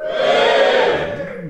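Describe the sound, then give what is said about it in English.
An audience in Wales, the Welsh among them cheering on request, lets out a loud, sustained cheer, many voices blending into one steady roar for about a second and a half before easing off slightly at the end. “can we have a cheer from the audience if you're Welsh, please?”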